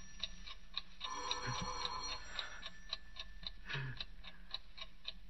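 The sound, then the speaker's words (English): A clock ticks steadily at 7 minutes to 3, with an alarm due to go off in 7 minutes, about two crisp, bright ticks per second, over a low hum with a brief tonal whine partway through. No one speaks. “Tick-tock. 7 minutes to 3. In 7 minutes, the alarm goes off.”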